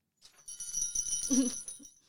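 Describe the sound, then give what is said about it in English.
A small bell is rung, giving a bright, high, shimmering ring that holds for over a second before fading, with some low muffled bumps underneath. “Maybe we should ring the bell every time I drink.”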